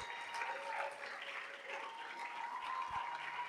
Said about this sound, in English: And I want you to clap like it's somebody you care about up here.